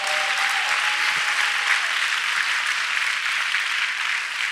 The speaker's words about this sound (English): Hallelujah, Lord. Would you give a clap for Jesus Christ?